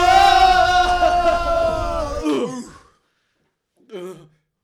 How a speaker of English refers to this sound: Oh, guys. Oh, another sneeze is coming up. Oh, oh no. Oh, one, two.